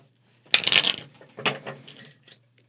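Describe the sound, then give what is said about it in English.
A quick papery riffle of shuffling cards bursts out, followed by a few softer flicks and taps as the deck settles, with no talking. “I'm not doing it yet because I'm waiting for her to get the cards shuffled and everything.”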